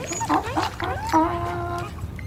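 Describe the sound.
A dog whimpers and whines: a few short, rising cries followed by a longer, drawn-out whine that trails off, with a low murmur in the background.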